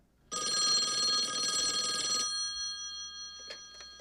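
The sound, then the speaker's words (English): A loud telephone bell rings in one sustained burst of about two seconds, then stops abruptly, leaving a faint lingering tone and a couple of small clicks; the phone call a coach receives. “The fake phone call bit after the coach's great speech and them him getting the phone call saying, hey, you're back in.”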